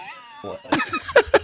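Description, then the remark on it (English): A person imitates a cat, giving a string of short, quick meows in a fairly loud voice, each one clipped and rising in pitch. “Meow. Meow. Meow. Meow.”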